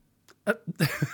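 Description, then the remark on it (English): A sudden voiced hiccup jolts out while someone tries to give an intro, followed by a couple more short, clipped vocal bursts and a breathy, airy exhale. The sounds are brief and abrupt, with no talking. “That was a hiccup while I was trying to give my intro.”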